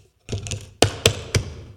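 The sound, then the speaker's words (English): A hand rattles and jostles a table, followed by three sharp, solid knocks on the wooden surface, evenly spaced, with no voices. “You didn't grab it and start going, oh, is this table?”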